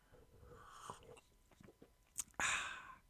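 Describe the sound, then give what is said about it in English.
A few small mouth clicks and clinks, then one loud, airy slurp as someone sips a cup of tea, lasting about half a second before fading. “There is a cup of tea in front of me. But I'll be editing out the bits where I slurp it.”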